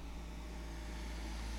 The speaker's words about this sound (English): I was waiting for that car to go past.